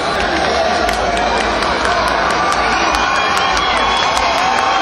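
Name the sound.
concert crowd cheering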